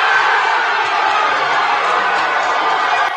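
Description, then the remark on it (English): A family in Indiana cheering and shouting excitedly as the Cubs select their family member in the baseball draft, taking cell phone videos; a dense, steady wall of overlapping voices that stays loud for the whole few seconds. “There's everybody going nuts. Cheering, taking cell phone videos of him.”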